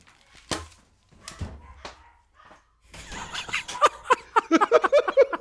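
A dog gives a few sharp, separated barks. Then, as it is chased around a room and caught, there is a busy burst of rapid high-pitched yelps and squeals over scuffling noise.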